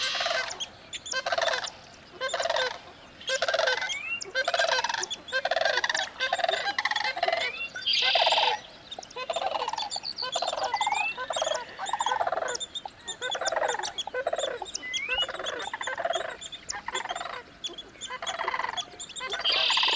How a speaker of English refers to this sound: Hear that? Sandhill cranes.